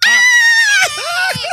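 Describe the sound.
A voice imitates a loud, high-pitched scream, holding a sustained shriek before breaking into a few shorter wavering yelps, all alone in about a second and a half.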